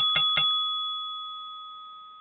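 A small bell is struck twice in quick succession, then its bright, clear tone rings on alone, slowly fading over a couple of seconds.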